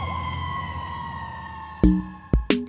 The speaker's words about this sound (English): So, while a fire truck might look red, the siren noise it makes might seem so green that the person thinks of fire trucks as being more green than red.